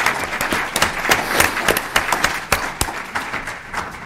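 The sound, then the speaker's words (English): An audience applauds Congresswoman Clark, Congressman Capuano and Congressman McGovern for voting for the people's budget, steadily for about four seconds, many hands clapping in a dense, crackling wash with a few sharper claps standing out. No one speaks over it. “So I want to give them a round of applause for supporting the people's budget.”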